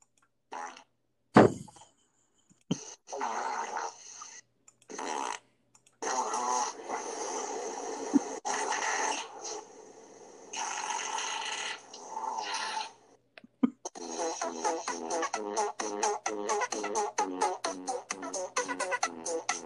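A string of loud fart sound effects, some drawn-out and buzzy with short pauses between, ending in a long rapid sputtering run of flappy bursts.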